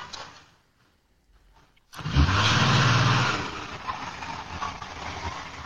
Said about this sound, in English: So the white minivan slams on its brakes and you'll see what happened. He just gets in, goes in reverse and tries to hightail it out there.